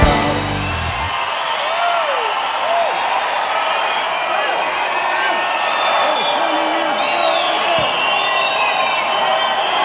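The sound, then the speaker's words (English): A large crowd roars and cheers continuously, with scattered whoops and shouts rising above a dense wall of voices, loud, sustained for the whole stretch. “Yes, a quiet, conservative opera kind of crowd, yes.”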